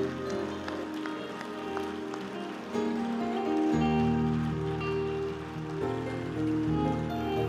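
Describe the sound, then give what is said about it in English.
A church audience claps hands as a clap offering in worship, a dense, steady burst of applause lasting several seconds, mixed with sustained musical tones underneath that shift partway through. “We worship him with a clap offering, God.”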